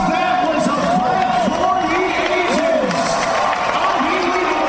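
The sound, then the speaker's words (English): A fight crowd roars wildly after a third-round TKO win, in a dense, continuous wall of cheering and shouting, with rising and falling yells and whoops layered over steady loud noise. “And you can listen to this crowd being going absolutely wild, haven't they?”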